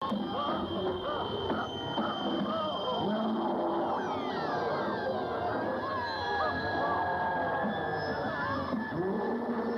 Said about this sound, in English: because you have Bigfoot roaring, you got the girl going you got the guy going Debbie